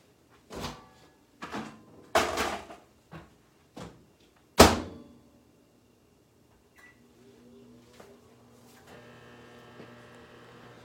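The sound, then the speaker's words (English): A series of short clunks and knocks as a popcorn maker gadget is put into a microwave ends with one loud slam of the microwave door, followed by the steady, low mechanical hum of the appliance starting up, with no voices. “Let's put in the microwave.”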